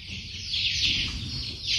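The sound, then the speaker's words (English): A dense, continuous chorus of high-pitched cheeping and chirping from many chickens being reared by a security man in an unused government storage warehouse in the Nankana area, fairly loud and steady throughout, over a low rumbling background with no one talking. “The government has not put the warehouse to use, so the security man there has started rearing chicken in the warehouse.”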